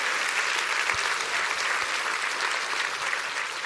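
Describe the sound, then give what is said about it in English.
A church audience claps together in sustained, dense applause for members of the church, many hands blending into a steady wash of sound that holds at an even level throughout, with no voices standing out. “Let's clap our hands for people in our church.”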